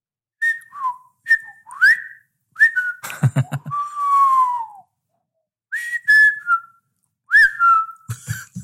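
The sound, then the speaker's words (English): Someone whistles, imitating a robot droid with quick warbling chirps, rising and falling sweeps, and a burst of clicky, buzzy beeps in the middle. “Yeah, it's just weird whistling.”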